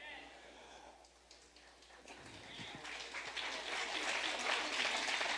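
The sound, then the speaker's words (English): An audience claps in a dense, steady wash of many hands, starting softer and swelling louder toward the end, with no single beats standing out. “You're clapping, but do you do it?”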